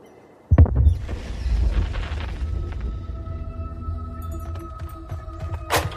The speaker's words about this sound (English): Gunshots. I think up near the cell phone tower, up on the hill.